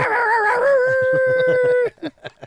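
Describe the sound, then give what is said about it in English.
A man lets out a loud, sustained dog-like howl that wavers and then holds steady for nearly two seconds before breaking off, followed by a couple of short breathy sounds. “And then my co-host, my main man, make some noise. The boy got some dog in him.”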